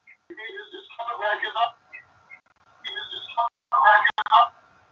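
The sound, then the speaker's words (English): Electronic telephone line tones from the phone service come and go in short bursts as the line comes back up, with brief high beeps and steady hums mixed with muffled, phone-filtered noise, at moderate volume. “It's the phone service.”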